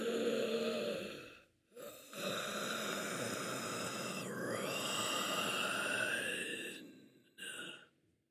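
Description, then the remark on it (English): A voice imitates the long, raspy gasp of a skeleton, a strained, breathy rasp stretched over several seconds with short breaks near the start and end, fairly loud. “It turns its head to you, and you almost hear a kind of gasp.”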